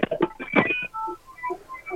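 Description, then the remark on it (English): A rapid run of electronic keypad dialing tones, short beeps in quick succession, crowded at first and then a few separate evenly spaced presses, heard clearly with no talking, as a phone is redialed to call back Prosper Eagles head coach Brandon Schmidt on a hotline. “We're going to call him back and try him again.”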